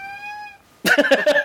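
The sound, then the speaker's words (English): A cat lets out a steady, drawn-out meow, then breaks into a loud run of quick, complaining yowls, with no one talking. “Your cat has complained.”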